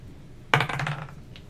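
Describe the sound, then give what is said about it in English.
Dice clatter onto a hard table, a sharp initial hit followed by a quick rattling tumble that settles within half a second, then one faint final tick. Fairly loud, with no talking. “The magic of those dice.”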